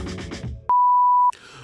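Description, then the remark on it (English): A number generator device gives one loud, steady electronic tone lasting about half a second, starting and stopping abruptly, with softer rustling and background noise before and after. “Wait, oh my gosh, the number generator is buzzing.”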